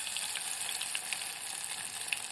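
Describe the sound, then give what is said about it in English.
Battered carrot and courgette pieces deep-frying in a saucepan with about an inch of oil: a steady hiss of bubbling fat with scattered crackles and pops, continuous throughout with no voices. “We've got a saucepan with an inch or so of oil in it, frying and”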